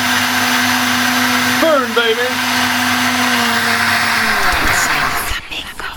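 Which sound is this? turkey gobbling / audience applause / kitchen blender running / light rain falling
kitchen blender running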